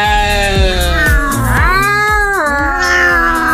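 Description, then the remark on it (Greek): A person imitates a cat, letting out a drawn-out, wavering meow that rises and then falls in pitch, sung loudly over a steady, thumping low beat. “τι έκανες τη γάτα μια ζωή? Όχι, εγώ την έκανα.”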